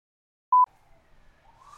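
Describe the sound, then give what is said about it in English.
A short, sharp electronic tone sounds once, then a faint police or ambulance siren outside wails on, its pitch slowly climbing toward the end. No one speaks. “All right, I'm going to let this police and or ambulance probably run its course.”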